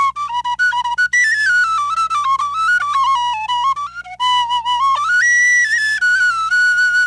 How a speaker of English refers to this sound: And then on my tuba, I've actually got Velcroed to it is a little penny whistle.